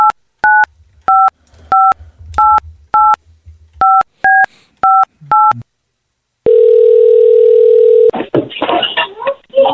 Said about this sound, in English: Okay, got a text. Got to make a phone call